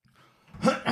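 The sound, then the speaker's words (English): Someone with something in their throat clears it with two quick, raspy bursts, loud and harsh, following a brief quiet moment with only faint murmuring underneath. “Speaking of COVID lungs, I got a little something in my throat.”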